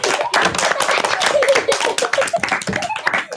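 A group of children clapping in a dense, rapid, uneven patter that holds steady for the whole few seconds, with faint voices and a few high calls mixed in underneath.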